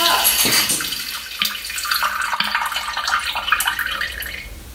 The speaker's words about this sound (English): It's just funny because I poured the hooch and it sounded like this.